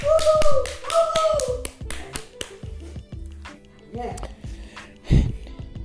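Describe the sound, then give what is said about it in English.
A quick burst of hand claps, loud, with a voice whooping over the first seconds before the clapping thins out into scattered claps and fades. “Give her a round clap of applause.”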